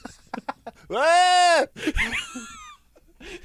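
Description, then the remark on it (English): A person imitates a goat, letting out a loud, strained, nasal bleat held for under a second, followed by a shakier, wavering second bleat, with a few soft vocal sounds before it. “If I could do a South African accent, without absolutely embarrassing myself, like the time I tried to make a goat sound.”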